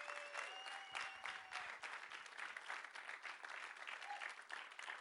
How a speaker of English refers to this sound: Come on, give him another round of applause.